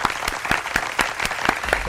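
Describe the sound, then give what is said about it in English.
A clapping sound effect on the Sarah and Vinny morning show on Alice 97.3, San Francisco: about eight sharp, crisp claps in a steady, even rhythm, roughly four per second, fairly loud, with no voices over them. “Clapping bit.”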